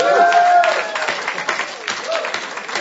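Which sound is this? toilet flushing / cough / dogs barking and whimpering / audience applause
audience applause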